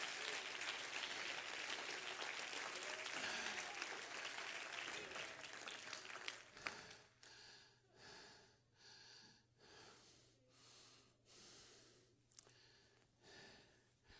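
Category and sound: crowd, audience clapping hands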